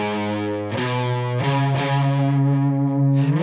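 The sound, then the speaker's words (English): Two heavily distorted electric guitars, panned left and right, play sustained chords together through a distortion pedal turned all the way up, changing chords a few times, with a thick, saturated, buzzing tone that stays loud and dense throughout. “And you can, the sustain between those and the dimed distortion pedal, it's just, is night and day different. But here's what those sound like together, panned right and left.”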